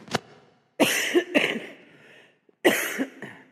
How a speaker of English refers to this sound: I'm about to cough, so mute me.